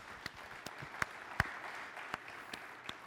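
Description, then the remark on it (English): An audience applauds to thank their pastor, Aaron, who is not present: a soft, steady patter of many hands with a few sharper individual claps popping out at irregular moments, fairly quiet overall and with no talking. “Let's just give Aaron a round of applause because Aaron is an awesome pastor.”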